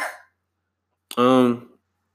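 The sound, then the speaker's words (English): A single loud sneeze: a sharp explosive burst that trails into a short voiced tail, preceded by a brief breathy intake and a moment of silence. “Sneezing again.”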